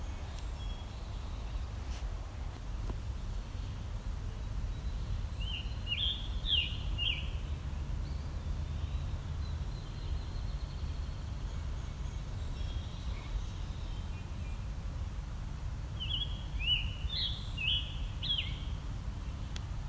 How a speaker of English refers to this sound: This old growth area, of course. Very mature. This one's on the edge of a ravine near the top. So I'm actually probably eye level with this bird, even though it's at the top of a tree.